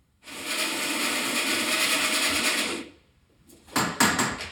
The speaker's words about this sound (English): You're just figuring out how to use the coffee machine.